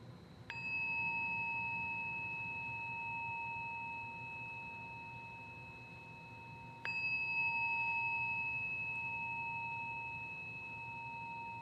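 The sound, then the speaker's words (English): A meditation bell is struck twice, about six seconds apart, at the close of a meditation session, each strike blooming into a long, clear, shimmering ring that hangs in the air and slowly fades. No voices, only the bell's tone. “And let that begin with really listening to the sound of the bell, and then to keep listening.”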